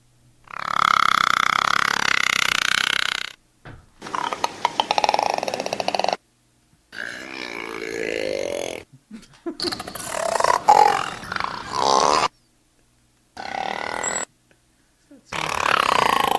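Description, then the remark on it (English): A voice imitates a creaking door in about six drawn-out, groaning creaks with sliding pitch, each separated by short silences, loud and unaccompanied by speech. “Do you want to hear the creaking door?”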